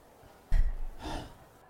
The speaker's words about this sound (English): You can skip the puffs. It's just hard to concentrate on the words when I'm breathing heavy. I thought we were doing like yoga breaths together. I was breathing with you. I was puffing when you wrote puff.